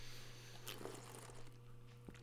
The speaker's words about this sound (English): That's how we should do this from now on. Synchronized slurps. Synchronized slurps.